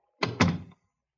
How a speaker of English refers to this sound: And close the door.